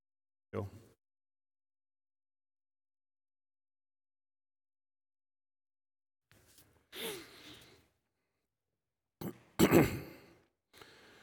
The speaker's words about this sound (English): I need to blow my nose first.